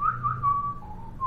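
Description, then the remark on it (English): A person whistles a short melodic phrase from a film score, the pitch stepping and gliding between a few notes, moderately loud with no talking. “How do you pronounce that name? Okay, I'll whistle it.”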